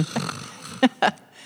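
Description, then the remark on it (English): Two quick, raspy snoring snorts, loud and close together, follow a low, quiet breathy rumble, like someone playfully imitating a snore. “Cue snoring.”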